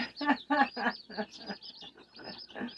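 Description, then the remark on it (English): Chickens cluck and squawk in a quick, uneven string of bursts, with a few louder calls at the start and softer chatter trailing after. “Chickens, man. The trippy dudes.”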